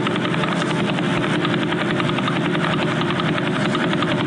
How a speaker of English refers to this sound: And we aimed it at the Vela Pulsar. And this is what we got back from the Vela Pulsar. This is what that thing sounds like right there.